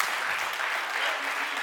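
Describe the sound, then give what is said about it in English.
A church audience claps their hands together in thanks for Pentecost, a dense, steady wash of applause from many people sustained throughout, with no individual claps standing out. “Are you thankful for Pentecost? Give a hand clap. Give a hand clap.”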